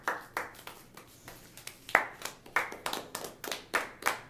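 Hands clap in a quick, uneven series of about a dozen sharp, bright claps, some doubled, with no voices present.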